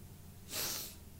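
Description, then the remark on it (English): A single short sneeze, a sharp breathy burst of hissing air lasting about half a second, rising and fading quickly over a faint low hum with no one talking. “Bless you, sir. Thank you very much. Bless you as well.”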